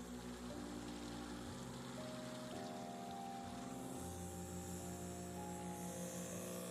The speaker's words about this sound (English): Number one, it'd be fun for you to hang out with me for 20 minutes while the ozonator, here it is, just a brief reminder. The sound of the bubbles.